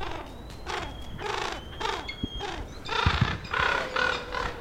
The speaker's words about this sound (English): Wow! You hear the wind and their wings when it's down.